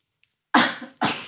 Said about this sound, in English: Stop coughing.